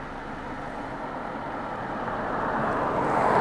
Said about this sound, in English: Yes, hello, other car.